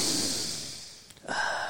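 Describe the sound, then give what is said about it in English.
An odd nasal sniff: a long airy draw of breath through the nose, a brief pause, then a second sharper snort-like burst. No talking. “Why'd you make a weird sniff?”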